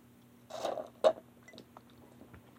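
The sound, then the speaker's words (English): Drinking sounds from a glass: a soft slurp and a sharper gulp, followed by a few faint swallowing clicks. “So anyways, let's drink this until the last drop, and we'll call it a night.”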